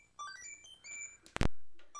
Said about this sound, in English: Oh god, hold on, I have a phone call.